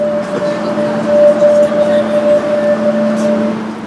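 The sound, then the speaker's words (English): Inside a moving, very packed underground tube train: a steady electric motor whine rides over constant rolling rumble, with faint indistinct murmuring from passengers throughout. “We are on our holidays and it's getting very cramped on this train.”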